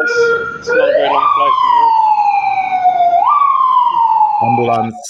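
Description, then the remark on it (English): A loud ambulance siren in Kyrgyzstan wails in long sweeping tones, rising and slowly falling twice across several seconds, with brief voices heard at the start and end. “Ambulance came first. Yeah. There are ambulances in Kyrgyzstan.”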